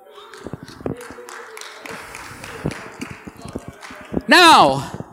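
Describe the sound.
A small crowd applauds with scattered, uneven claps at moderate volume, and near the end one voice lets out a loud, rising-and-falling whoop over the clapping.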